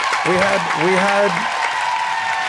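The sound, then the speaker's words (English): Steady applause from a crowd welcoming guests on a show fills the whole moment, a dense patter of many hands clapping, with a voice calling out loudly over it near the start. “Let's clap it up one more time,”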